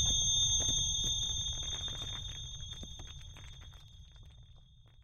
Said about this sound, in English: I was greeted by a heinous beeping sound as I came to. My phone was alerting me that the battery was about to die completely.